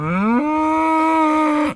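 A single loud bull moo lasting almost two seconds, with a low rising onset that settles into a long steady tone rich in harmonics, then cuts off abruptly. No talking.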